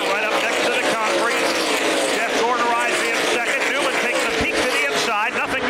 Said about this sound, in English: We're going back to green flag racing as they head off into turn number one. Elliott Sadler leads them down. Jeff Gordon, Ryan Newman, Jimmy Spencer, Sterling Marlin chase him over to turn two. Everybody remain single file for the moment.